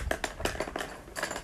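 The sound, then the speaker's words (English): Several quick wooden clacks and rattles as pencils drop one after another into a bear-shaped container, moderately loud, with a short pause before a final clatter. “Okay, so first I'll put pencils in this one.”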